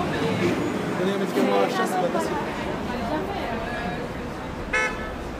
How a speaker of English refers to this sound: I forgot about cities, noise and crowds. And yet, despite all the people around, you're somehow more anonymous.